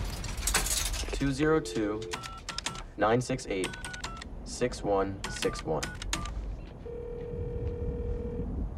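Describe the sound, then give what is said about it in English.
Coins clink into a payphone at a phone booth, followed by a quick series of keypad presses and clicks dialing a number amid muffled voices, then a steady electronic line tone hums alone near the end. “pops some change into the payphone and calls the number on the slip of paper.”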